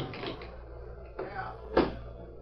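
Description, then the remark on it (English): A knife pries at a locked desk drawer: a scraping, straining stretch followed by a single sharp crack as the lock gives, moderately loud, with no one speaking. “Now, the drawer is locked. Give me your knife, will you? Here, knife. Thanks, Tonto. I'll have to pry the lock.”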